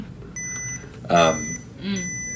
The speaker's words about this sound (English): I think your camera just died. Did it? I think so. It was beeping.